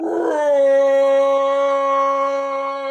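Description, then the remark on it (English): A voice lets out a long, loud imitation roar, held at a steady pitch for nearly three seconds and sounding almost like a howl, with no other talking. “Roar!”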